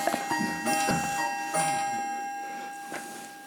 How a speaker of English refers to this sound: This is your very funky clock, which we are going to keep in because I love it. We'll just let it pass.